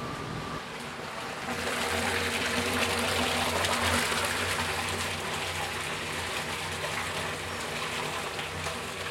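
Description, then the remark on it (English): A batcher pours 100 liters of hot water into a cooking pot in a steady, loud, continuous rush, with a low mechanical hum underneath; the flow swells after the first second and stays strong throughout. “And what it does, it batches 100 liters of water into the pot, hot water.”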